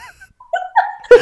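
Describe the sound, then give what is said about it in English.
A single sneeze: a short, rising voiced intake that ends in one sharp, loud, noisy burst, with no talking around it. “Bless you”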